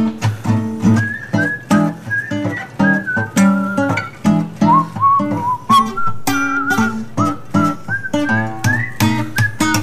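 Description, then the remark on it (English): A bright whistled melody glides and bends over a steady instrumental backing track with bass and rhythmic chords, the whistle sitting up front and clear, with no talking. “So this one, I'm just going to play the backing track, and you can whistle along to your own solo.”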